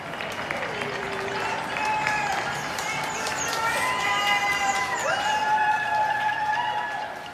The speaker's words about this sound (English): And right at 7 p.m., there was a cheering and clapping and banging pots and pans. People, you know, basically kind of screaming out their window and hooting and hollering.